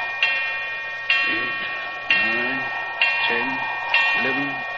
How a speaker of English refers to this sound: What a clock. Sounds like the knell of doom.